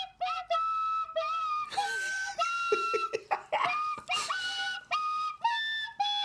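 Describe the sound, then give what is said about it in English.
A voice imitates a penny whistle by mouth, producing a string of reedy, wavering notes in a happy-birthday rhythm as a birthday shout-out, fairly loud, with bursts of laughter breaking in midway. “I can't play on the penny whistle. None of that sounded anything like the notes. So I just did the rhythm with my mouth.”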